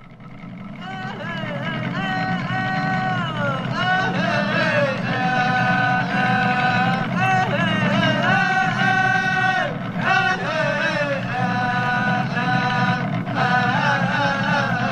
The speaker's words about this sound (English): Oh, I'm glad you brought up the bear dance. We have a clip of this. You can hear the rasping, growling sound along with the singers and drums.